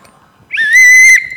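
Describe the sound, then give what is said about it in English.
A single loud, shrill blast from a gold whistle swells in quickly and holds a steady piercing tone for under a second before cutting off, with no one talking. “And for Coach, I just want to say, I know you're going to really want this gold whistle.”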